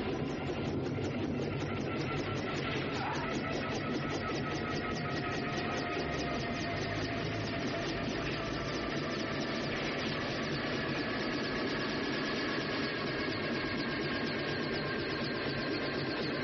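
A loud helicopter engine roars steadily as the helicopter falls, its dense mechanical drone carrying a fast, even chopping pulse, unbroken, with no voices.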